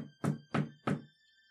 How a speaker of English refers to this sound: Is that chair tilted to the right a little bit? Yes, that's why there's a bar of wood in it. Somebody just give me one more chance to just knock, just tap on that thing, not on the glass area.